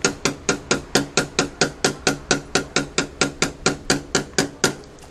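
Steady, rapid knocking on a door to get the woman inside to answer, about eighteen sharp, loud raps at an even pace over roughly five seconds, with no voices.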